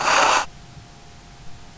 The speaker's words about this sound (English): You'll probably have to edit this later. I am going to blow my nose.